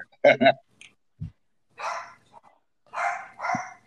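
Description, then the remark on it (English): A dog gives two quick, sharp barks, then a few scattered breathy, rustling bursts follow with low background noise between them. “Let that dog outside.”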